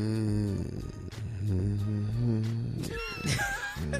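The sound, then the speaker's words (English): A person hums a slow, gospel-style melody alone, holding steady notes that glide between pitches, then rising higher and wavering toward the end. “But, okay, well, let us hear your hum then. What's your hum like?”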